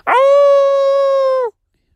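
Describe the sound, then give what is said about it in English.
A person sitting outdoors in California lets out a single loud, steady howl imitating a coyote, aimed at a coyote on a mountain about 100 yards away, held for over a second before dropping off sharply into silence. “It's a coyote on the mountain. Oh, he looks so cool. I kind of want to howl at him.”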